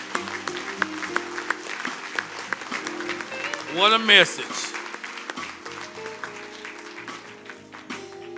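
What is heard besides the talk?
round of applause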